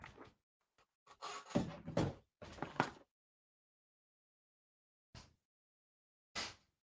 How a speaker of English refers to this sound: Come on, hurry up. You just do whatever you want, don't you, cat? You just scratch on the door, you do whatever you want because you're a big fat stinky cat.